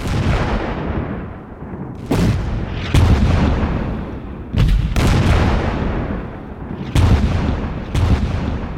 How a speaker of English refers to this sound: And the situation for Kreisler and his regiment didn't improve when they suddenly noticed that damn Russian airplane circling above them again. And what came next? Accurate artillery fire.